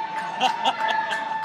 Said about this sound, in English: Don't boo them hugging. They're booing them.